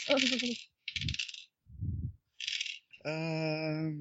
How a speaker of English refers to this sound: Go ahead and roll scrutiny for me. Two nines. Get your dice.